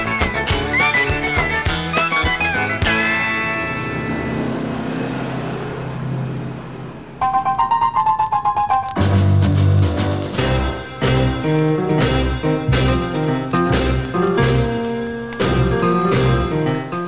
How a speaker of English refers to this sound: Oh, I'm guessing that is the first time in the history of this show that I have played a record from 1973, but that was a fantastic record. I just dug that one